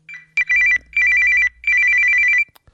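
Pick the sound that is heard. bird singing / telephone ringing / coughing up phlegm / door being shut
telephone ringing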